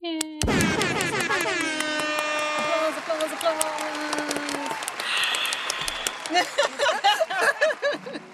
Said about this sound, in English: Oh, shit. It's harp.